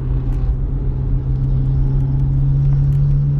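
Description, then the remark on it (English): A beat-up old Mazda Miata engine with racing modifications runs with a loud, deep, steady throbbing drone and constant low rumble, holding a fairly even pitch throughout with no one talking. “Is that a Mazda Miata? I don't know. It's beat up like hell, but it's got. Sounds like it's got some racing mods on it.”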